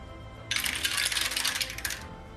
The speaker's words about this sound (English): I do love the sound of multiple dice rolling. It's so good, so satisfying.